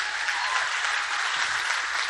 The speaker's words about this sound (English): Come on, if you still believe in a God of breakthrough, clap your hands and give him praise.